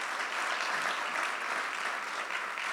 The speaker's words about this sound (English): So let's give them a round of applause and let's promise.